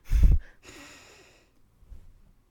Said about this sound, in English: See? You're sniffing up something.